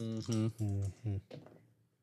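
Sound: two dice being rolled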